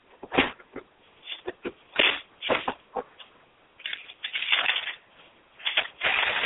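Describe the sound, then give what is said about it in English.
Paper being handled and crumpled, a run of irregular crackling rustles and crinkles in short bursts and longer stretches, with no talking. “Okay, play with paper once we're done with the show.”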